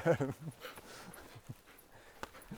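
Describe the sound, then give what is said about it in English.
A dog named Luna whimpers impatiently, with a short, strained whine at the start followed by softer, intermittent whimpering sounds against a light background hiss. “The dog's getting impatient.”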